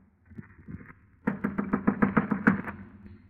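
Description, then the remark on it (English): A quick, steady burst of about ten firm knuckle knocks on a door at the top of a staircase, fairly loud, after a few faint taps at the start, then quiet. “I clenched my teeth, my knuckles, and knocked on the door.”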